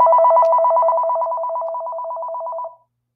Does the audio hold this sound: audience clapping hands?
no